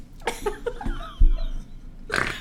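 Several short, rough snorts sound up close, with a low rumbling grunt in the middle and a breathy burst at the end. No one speaks.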